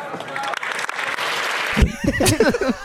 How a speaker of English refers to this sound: Surely they all applauded did no one did no one speak up did no one think